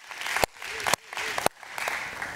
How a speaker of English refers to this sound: Yup, slow clap, uh-huh, yeah.